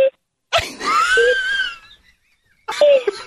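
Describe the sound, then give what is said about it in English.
A person imitates the strange non-meow call of Monty, a big 18-pound yellow cat that doesn't know how to meow: a short squeak, then a long, wavering, nasal whine that bends in pitch, followed by another brief squeaky cry after a pause. “That's not the sound I expect from an 18-pound cat.”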